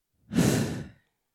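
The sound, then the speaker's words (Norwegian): A single deep, breathy exhale, like a long sigh, lasting under a second, with no talking. “Du kan puste dypt inn og ut.”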